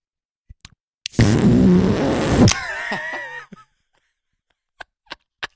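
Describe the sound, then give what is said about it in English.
A beer can cracks open with a loud, sustained fizzing hiss, trailing into a squeaky, fart-like sputter, followed later by a few faint sharp clicks. “There's a fart noise with every opening.”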